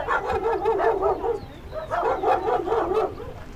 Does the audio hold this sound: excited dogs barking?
yes